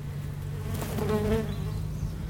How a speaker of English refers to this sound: Okay, this microphone that's on the ground, is going into well, the hole now. That bee nester is literally on the ground. Just coming to go in that hole, I think.